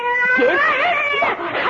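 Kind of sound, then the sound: animal, cat yowling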